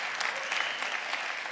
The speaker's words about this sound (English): I hope you guys know what a gift New Life Friday Night is. I mean, come on, y'all can clap.